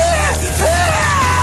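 A famous stock movie scream used in the Star Wars movies: one loud, strained male yell lasting just over a second, its pitch dipping briefly midway before rising and trailing off, with no talking.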